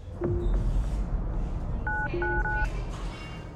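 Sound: telephone keypad dialing tones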